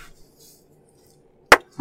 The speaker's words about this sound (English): Oh, I just hit my funny bone when I clapped.